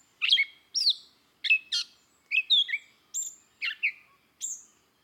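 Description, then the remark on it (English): A grey catbird sings a varied, jumbled run of short squeaky and mewing phrases, about nine bursts with brief pauses between, clear with no other sounds. “She is the parrotest of the woods”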